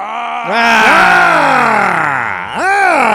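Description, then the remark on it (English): A loud, drawn-out vocal growl with a rough, harmonic tone that slides slowly downward in pitch, dips, then rises again in a short final burst. No words are spoken. “The growl is weak today”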